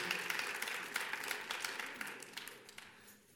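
A crowd applauds steadily, many hands clapping in a dense, crackling wash that holds for a few seconds and then gradually thins and fades toward the end.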